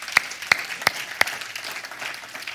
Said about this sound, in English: I'd like to give you all another round of applause.